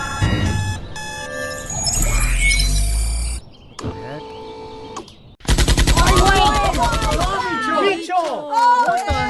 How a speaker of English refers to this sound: Okay, here's the Squid Game Narcos alarm clock. Oh, así te va a despertar.